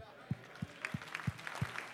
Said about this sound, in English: That was a nice perfunctory Baptist hand applause. Thank you so much for that.